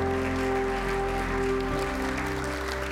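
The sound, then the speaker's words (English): An audience claps in praise, a dense, continuous patter of many hands over sustained organ-like chords that shift to a lower note partway through. No one speaks. “Come on and give my hand clap of praise in this building today.”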